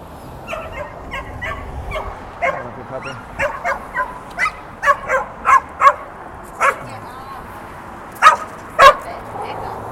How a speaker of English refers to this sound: Okay, we're past the big dogs, and they were all trying to get aggressive.